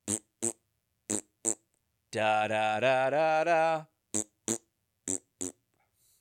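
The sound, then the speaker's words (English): A voice imitates farting to the tune of a classical piece, in the manner of the performer Le Pedo Man, with a buzzy, raspberry-like mouth sound held for about two seconds, its pitch stepping through a little tune, framed by short sung syllables before and after. “He would just go up and fart. Yeah. But to like the tune of a classical tune.”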